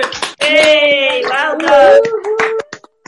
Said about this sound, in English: So I think I'm going to be daring now and say I think we should all unmute and give them a great big clap. So off we go. Unmute yourself.